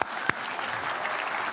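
An audience applauds with steady, dense clapping that holds an even level throughout, with a sharp single clap standing out near the start. No one speaks over it.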